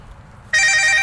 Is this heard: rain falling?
no